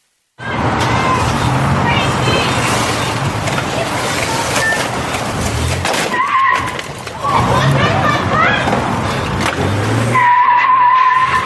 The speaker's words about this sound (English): Well, one woman pumping gas rushed to move her minivan while the pickup driver got back into his dinged truck and made another attempt to pull out. But the built Ford Tough F-150 could not beat the cement pole.